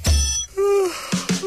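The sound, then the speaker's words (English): An alarm sounds: a low thump, then a sustained electronic tone that bends slightly in pitch, followed by two sharp bursts with short bright beeps. No one speaks. “as the alarm kicks in for another day.”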